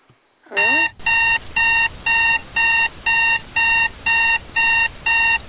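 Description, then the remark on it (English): An electronic alarm clock beeps in a steady, rapid rhythm, about ten loud, evenly spaced bursts of high-pitched tones, alone after a brief sliding chirp at the start. “Are you tired of the same boring Chinese-made alarm clock ordering you to get up every day?”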